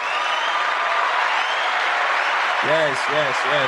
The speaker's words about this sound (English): But it's also Pride Month. Shout out to my people from the LGBTQ community. Clap it up for them,